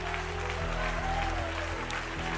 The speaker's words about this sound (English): Come on, clap your hands for this woman of God coming forward. God's hand is on her life.